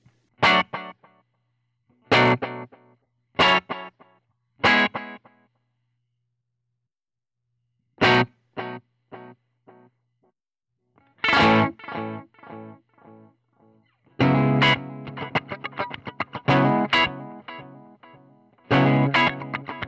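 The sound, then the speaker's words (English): Electric guitar through a delay effect, dry of reverb: sparse, loud plucked chords with short trailing repeats, building into a denser, busier strummed passage near the end. No one speaks. “So I'm going to take out the reverb. Let's see what the delay does.”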